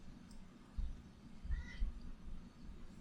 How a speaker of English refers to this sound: Right? I don't know what the cat wants from me. What do you think? Food, maybe? No, he ate. He eats. He eats all the time.